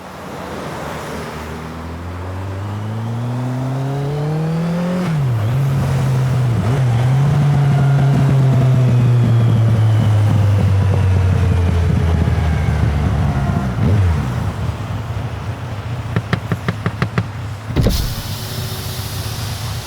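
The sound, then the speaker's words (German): A car engine at a car rest area on the Italian A5 motorway southeast of the Mont Blanc Tunnel revs up with a rising whine, settles into a loud steady drone, then winds down before cutting off abruptly; no one speaks. “Früher an diesem Tag auf einem PKW-Rastplatz an der italienischen A5 südöstlich des Mont-Blanc-Tunnels.”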